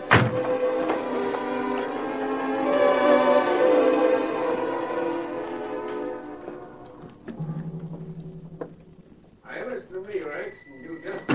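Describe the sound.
A rear door of the El Dorado Club, leading to the hall to Tinsley's office, opens with a sharp thunk and a long, ringing creak that slowly fades, then shuts with a dull low thud; a voice begins speaking right after.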